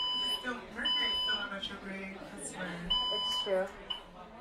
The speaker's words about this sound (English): We received an alarm at the fire command station. We are investigating the situation. Please stand by for additional information.